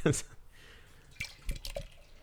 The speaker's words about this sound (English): So, I'm going to pour a few glasses here of Electronic Fog from Flying Machine Brewing Company.